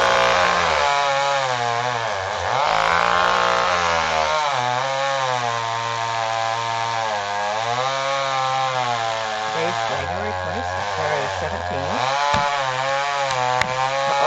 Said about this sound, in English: Well, here's the video of a guy chopping a tree down in the wintertime in the snow right near his house. And you can only imagine what happened.